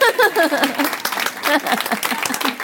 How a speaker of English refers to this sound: An applause for the husband.